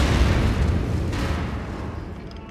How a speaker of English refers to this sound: A couple of years later, Joey's brother Billy was blown up by a car bomb right in front of him.